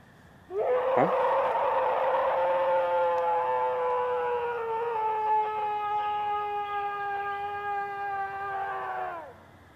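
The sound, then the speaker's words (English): A purported Wendigo scream: one long, loud, eerie wailing howl that rises sharply, holds a steady, harmonically rich pitch for about nine seconds, then dips and cuts off. No talking. “And there's some audio of supposedly what one's scream sounds like.”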